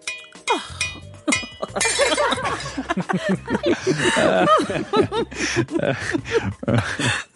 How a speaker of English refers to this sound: You whirl around to face me as you gloat and accidentally knock your glass of Pinot Noir to the ground.